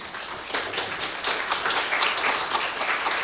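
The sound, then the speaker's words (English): Steady audience applause for someone who got 12 people organized and through the airport with all their bags, a dense crackle of many hands clapping at a fairly even level for a few seconds, with no voices over it. “he does deserve applause for getting 12 people organized and through the airport with all their bags too.”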